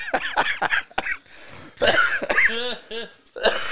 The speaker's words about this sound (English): You need to hit your cough button when you do that.